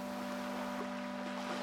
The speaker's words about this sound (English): The turquoise ocean lapped in and out of the contours of each ear. And in the gurgling of the water, she heard voices singing.